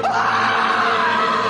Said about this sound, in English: At the sound of the shriek.